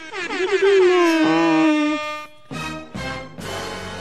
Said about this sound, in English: Oh! Wrong song. I meant to do the air horn.